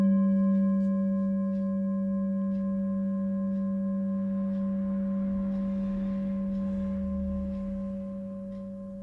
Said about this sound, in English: And noticing the movement of the sound of the bell through time.